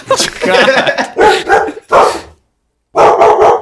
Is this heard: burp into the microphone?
no